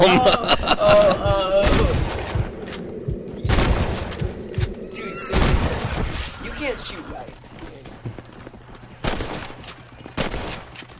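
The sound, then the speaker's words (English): Rifle gunfire in a video game: five or six loud, sharp shots fired at irregular intervals, each cracking out and ringing off, with a voice briefly heard at the start and a low rumble underneath. “They don't like the crappy rifle.”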